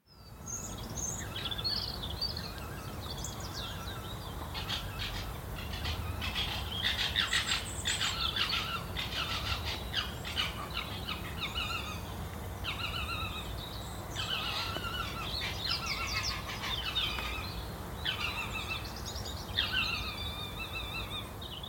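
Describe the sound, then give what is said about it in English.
Foxes calling at night in a garden, recorded on a phone about 30 feet away: a run of shrill, raspy yelps and screeches in quick, irregular bursts, several overlapping, over a steady hissing background, with no talking. “Well, that's definitely some foxes, isn't it?”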